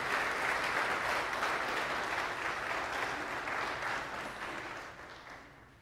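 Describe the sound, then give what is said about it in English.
An audience at Mountain View Baptist Church applauds steadily after a baptism at the start of a morning worship service, a dense crackle of many hands clapping that holds strong for several seconds and then slowly thins and fades toward the end. “All right, now if you would give her a round of applause.”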